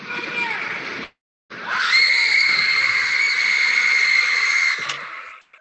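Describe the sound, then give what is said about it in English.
A basketball crowd at a Towson versus Drexel game roars, drops out for a moment, then surges back as a long, loud, piercing high-pitched scream during a Towson player's free throw, holding steady over the crowd noise for several seconds before cutting off; the free throw is missed. “A really loud scream and ended up working out, and Drexel ended up winning the game.”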